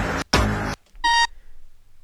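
Two harsh, loud bursts of buzzy electronic noise are followed by a single bright, sustained electronic beep, sampled sounds in a beat. Then a low rumble fades out. No one speaks.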